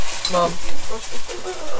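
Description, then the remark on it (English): A pot of salt fish boils over on the stove during its first boil, its spill sputtering and sizzling in a steady hiss, with faint kitchen clatter and stirring underneath. “That's one of the things about boiling salt fish. It does tend to creep up on you.”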